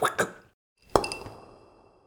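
Two quick, soft slurping bursts, a brief pause, then one loud, sharp plop as a ball is sucked through a drink straw, its ringing tail fading slowly.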